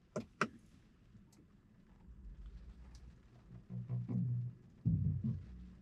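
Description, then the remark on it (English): A couple of sharp clicks, then a low hum and a short, soft musical chime of a few rising tones from a new electric car starting up as the driver, foot on the brake, presses the start button; heard from inside the car as the display screen comes up. “That little music seems to happen all the time.”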